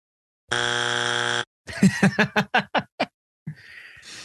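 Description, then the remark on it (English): A loud, harsh game show wrong-answer buzzer blares for about a second after a wrong pronunciation of the town name Dowagiac, followed by a burst of rhythmic laughter and then a short rustle of noise. “I'm gonna need you to hit that buzzer.”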